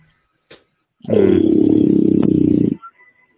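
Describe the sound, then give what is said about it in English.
A single loud, deep growl rumbles for nearly two seconds, low and gravelly with a rapid fluttering pulse through it, then cuts off. A couple of faint clicks come before and after. “That deep growl part is getting better.”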